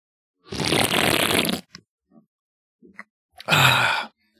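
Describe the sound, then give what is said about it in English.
Someone slurps a drink loudly in two long, noisy pulls about a second each, with a few faint smacks and gulps in the quiet gap between them. No one speaks. “So all my hashtag Team Slurp fans out there, this one's for you.”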